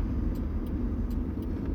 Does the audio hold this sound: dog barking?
no